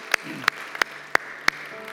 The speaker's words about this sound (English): Can we give these three individuals in first service a huge round of applause?